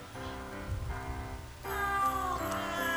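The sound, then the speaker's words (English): Cat meows pitched into a cheerful Christmas melody, a run of sustained, stepping notes that swell louder and brighter halfway through, with no talking. “with a little pussy cat Christmas music”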